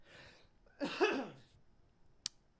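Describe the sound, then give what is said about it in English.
A single harsh cough, recorded in 2020, bursts out rough and voiced with a short trailing rasp, followed by quiet and then a brief sharp click. “Cough.”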